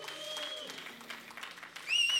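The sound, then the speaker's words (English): A church audience applauds with steady, dense clapping while high, piercing whistles ring out over it, and the cheering swells louder with a sharp whistle near the end. “And so, well, y'all just make noise for them one more time.”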